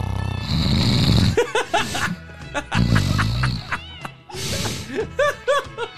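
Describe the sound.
A man exaggeratedly imitates loud snoring, with two long rumbling inhales followed by wheezy, whistling exhales, performed alone without other talk.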